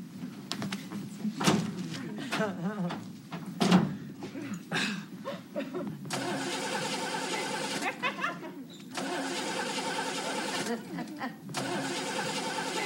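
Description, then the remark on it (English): A few sharp clicks and thumps, then a man starts his car: the engine cranks and catches, settling into a loud, steady rumble that briefly dips twice as it runs. “Goes out to start the car and just go get some.”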